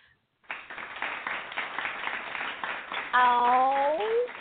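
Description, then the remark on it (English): A burst of canned applause sound effect played from a soundboard button, a dense, steady clatter of many hands lasting a few seconds, with a rising vocal whoop or cheer riding over it at the end. “Nobody don't want to hear your damn applause.”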